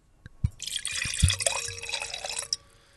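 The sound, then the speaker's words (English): Wine is poured steadily into a glass for about two seconds in a relaxed end-of-harvest pour. It makes a bright splashing trickle with a few low clinks and thuds at the start, fairly loud, with no voices. “It was a very relaxed pour. That was a end of harvest that pour.”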